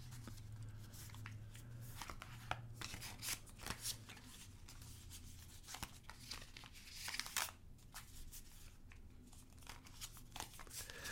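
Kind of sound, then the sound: household object, tarot cards being shuffled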